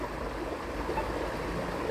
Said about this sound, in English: You hear this water? This is my meditation spot, one of my places that brings me solace and peace. West Vancouver.